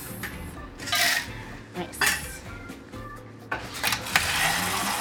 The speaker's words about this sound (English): So, basically, what he did was he whipped it. So, he put it like a very small amount of ice and then he whipped it.